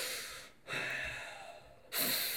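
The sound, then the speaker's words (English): Exaggerated heavy panting breaths, loud, in three breathy bursts with a brief pause between them and no talking. “Yeah, if you're just breathing heavy anywhere, someone will be like, "Oh yeah."”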